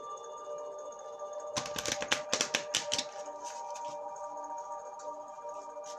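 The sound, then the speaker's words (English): A quick burst of crisp, rapid riffling as an Abundance Angels card deck is shuffled before cards are pulled, lasting about a second and a half over a steady low background hum, with no talking. “So, I'm going to shuffle, and then I'm going to pull.”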